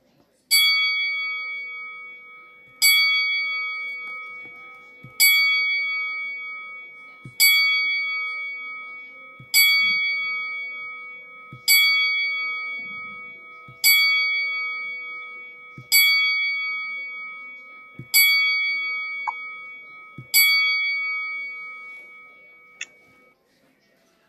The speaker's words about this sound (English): And we're going to do a 10-bell salute for Mr. Jerry Jarrett. Please join me in a moment of silence as we toll the bell 10 times.